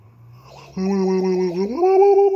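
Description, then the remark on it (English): A person yawns, a long voiced exhale that starts low, holds steady, then rises in pitch near the end, loud and drawn out for about a second and a half. “Sorry, I was yawning.”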